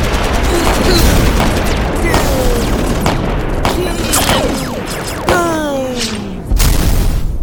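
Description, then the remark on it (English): A dense, loud barrage of rapid laser zaps with descending pitch sweeps, layered over rumbling explosions and crackling blasts, continuous for several seconds with a few sharper hits standing out. “After an intense but short barrage of laser fire and explosions, the smoke clears”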